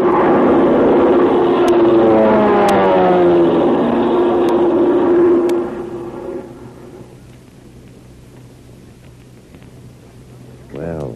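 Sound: airplane engine flying overhead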